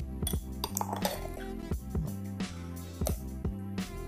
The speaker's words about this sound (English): So I'm using a spoon to scoop up the chocolate chips I poured in my milk drink here. It's like eating and drinking at the same time.